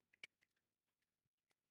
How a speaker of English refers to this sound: Okay, so that's two coins in my hand. I'm not wearing any jewelry that it can be bouncing off of. It's two coins in my hand.